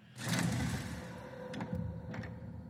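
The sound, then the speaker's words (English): In the video game Skyrim, a black door at the top of stairs leading outside opens with a heavy, grinding rumble that swells quickly and then fades, followed by a few sharp clicks and knocks. No one speaks. “Alrighty, we're heading up the stairs, outside, out the black door, as you can hear.”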